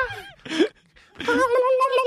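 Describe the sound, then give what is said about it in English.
A voice imitates dolphin noises: a short raspy squeal and a rising burst, then a sustained high, wavering squeaky whistle that trembles in pitch for about a second. “We're horrible at dolphin noises.”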